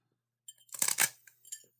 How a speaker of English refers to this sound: Look, you hear that? You hear the crunch? It sounds like she's chewing on rocks.